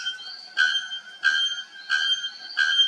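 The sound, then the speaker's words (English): A recording of a bellbird call, which can be heard from up to 2 miles away: loud, shrill, metallic notes pulse four times in a steady rhythm over a continuous ringing tone, with no voices present. “Yeah, so I got the recording of the bell bird.”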